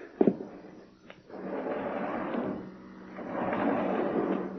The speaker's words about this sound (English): get the door open, will you?